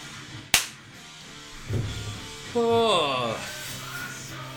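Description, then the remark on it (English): A single sharp hand clap cracks out early and fades quickly, followed by low background murmur and a voice speaking briefly afterward. “Let me clap.”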